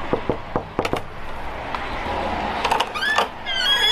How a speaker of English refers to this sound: Let's go knock on the door and say g'day.